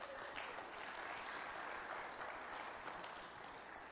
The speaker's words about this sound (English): Isn't it good to be back in church again? Amen. Let's clap real loud or something.